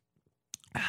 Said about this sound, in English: I'll tell you, I feel so satisfied just having drunk that little sip.